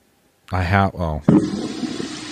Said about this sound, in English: That's a toilet. That's a long flush. Wow. Jesus. That is a long flush. Wow. It's one of those shitty bathrooms.